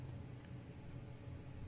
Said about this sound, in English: It's four intersections there. It's too much. It's a lot of traffic here.